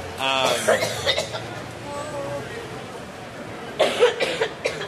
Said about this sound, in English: coughing and I feel so bad for her.